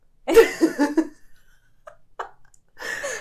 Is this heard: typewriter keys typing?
no